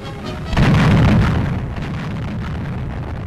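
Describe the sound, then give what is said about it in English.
A gun fires a salute: a single heavy cannon blast booms out, loud and deep, then rolls away in a long low rumble that gradually fades. No voices are heard. “They load the gun, aim it. Then a burst of thunder.”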